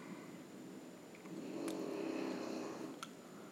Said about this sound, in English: please, with the snoring.